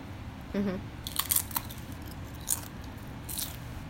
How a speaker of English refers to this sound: Like, the first crunch of the carrot is good. Yeah. And then you get to that part. Like, the chewing part.